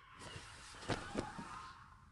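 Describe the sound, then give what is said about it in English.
Faint road noise from two cars rushing past in quick succession, a rising whoosh that peaks twice close together and then fades out, with no voices. “That was two cars.”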